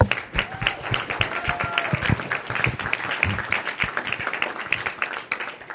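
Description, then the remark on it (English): Steady applause from an audience for scholarship winners, many hands clapping in a dense, continuous patter that stays fairly loud throughout, with a few faint whistles or cheers rising above it. “And applause for our scholarship winners.”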